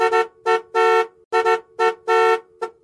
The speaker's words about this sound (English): About a minute went by, and Jim, the patient and considerate soul that he was, began honking again.